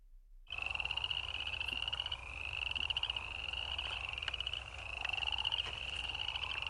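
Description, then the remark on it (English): A dense frog chorus recorded in a backyard: spring peepers' high, steady peeps overlapping with the rapid clicking trills of cricket frogs and chorus frogs, plus the loud snore of crawfish frogs in the background, continuous and fairly loud, with no voices. “So you should be able to hear in there spring peepers, you should hear cricket frogs, chorus frogs, as well as the real loud snore in the background.”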